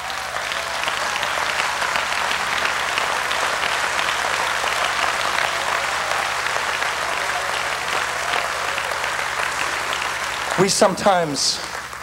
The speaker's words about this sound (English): Clap again.